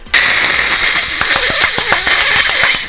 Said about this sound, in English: Here, Carl. Here's your applause.